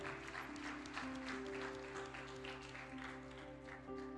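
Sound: audience clapping hands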